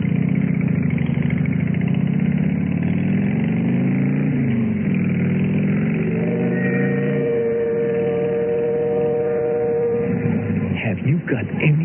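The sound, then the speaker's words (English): A motorcycle engine rumbles and revs, its pitch rising and falling as it pulls away, then holds a steady droning note before easing off and sputtering as it pulls up in front of the Lace house. “How I felt when I pulled up in front of the Lace house, helped her off the bike”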